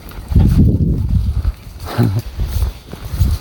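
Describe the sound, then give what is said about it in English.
A dog pants in quick, rhythmic huffs on a walk through a hazel wood, a steady run of short breaths that rises and falls in loudness, with soft rustling and crackling mixed underneath. “Panting dog.”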